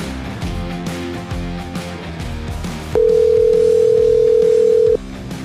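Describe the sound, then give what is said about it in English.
A single loud, steady electronic ringback tone sounds for about two seconds as an outgoing phone call rings, rising above busy party music playing in the background. “Get that phone ringing.”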